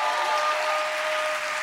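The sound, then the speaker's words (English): A crowd claps steadily, a dense wash of many hands with no pauses, loud and even throughout with no voices on top. “Come on, somebody clap your hands and say yes.”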